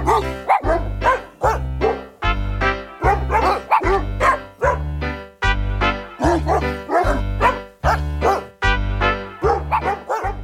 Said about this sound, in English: I wish I knew how they did that. How they could. That takes a lot of work to put the barks together that become a song. So they did really good.